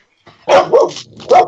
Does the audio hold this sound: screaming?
no